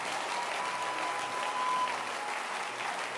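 An audience at a church service claps for Jesus steadily, a dense wash of many overlapping hand claps at an even loudness throughout, with no one speaking over it.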